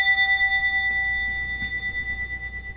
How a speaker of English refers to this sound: Ring the bell.